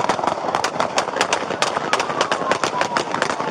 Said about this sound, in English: It looks like police may have the suspect cornered in a parking lot. But he takes off again, and a barrage of shots ring out.